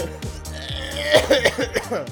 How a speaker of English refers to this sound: I was gonna cough a lot.